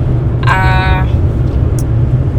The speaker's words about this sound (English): We talked about renting a car since we're, you know, currently riding a rental car.